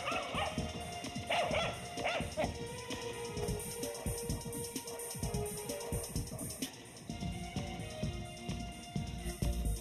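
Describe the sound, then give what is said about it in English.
A dog barks repeatedly in short, loud bursts with a few yips and whimpers mixed in, continuing throughout over a busy background. “You're …, but you're a dog.”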